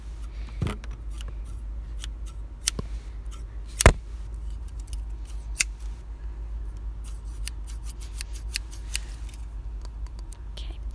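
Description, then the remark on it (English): Scissors snip hair during a haircut in quick, irregular bursts of crisp, faint clicks, a few sharper and louder than the rest, over a steady low hum with no one speaking. “Snip, snip, snip, snip, snip, snip, snip, snip.”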